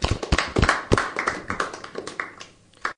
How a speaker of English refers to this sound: Let's give a big clap to finish off the episode, hey?